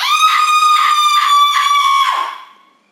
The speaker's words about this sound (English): What the fuck was that? Was that a scream? What else could it be? I don't think anyone else heard it. Everyone's still asleep.